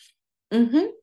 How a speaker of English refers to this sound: You got me yawning.